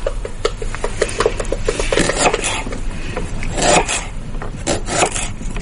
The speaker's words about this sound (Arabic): هذا كان تقطيع بصل.